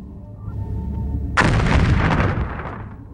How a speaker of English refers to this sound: The station is rocked by an explosion, but the shields seem to be holding.